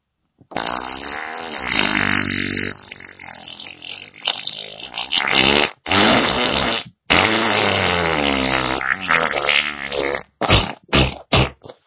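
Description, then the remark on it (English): Loud, drawn-out farting sounds rip and sputter for several seconds, changing pitch as they go, then break into a handful of short, sharp bursts at the end. No one speaks. “Take in a deep breath, and then push all your farts out as loud as you can.”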